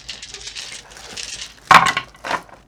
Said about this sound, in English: Ooh, oh. That's a cocked die.